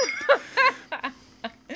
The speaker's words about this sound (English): That's not a sleigh bell, it's a bear bell. Of course it is. I have a deathly fear of bears, and I have a lot of hiking bear bells, so, you know, it's the next best thing.